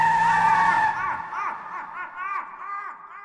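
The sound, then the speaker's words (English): A car engine, the car covered in bees, revs hard with a squealing whine for about a second as a father guns it down a driveway, then the roar drops away as the car speeds off, leaving wavering, rising-and-falling voices of people screaming. “We opened the car door, heard my father rev the engine, and gunned the car down the driveway, all of us screaming all the while.”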